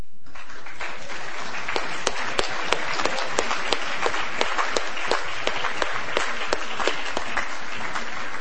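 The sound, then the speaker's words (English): An audience applauding steadily as school students' names are read out, dense overlapping hand claps with a few sharper individual claps standing out, sustained at even loudness for several seconds with no talking. “So we clap, clap, clap.”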